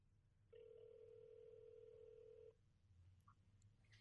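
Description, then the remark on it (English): An outgoing phone call rings once with a steady, buzzy two-second ringback tone, then cuts to a quiet line hiss with faint low rumble and no voices. “It's ringing in case you can't hear.”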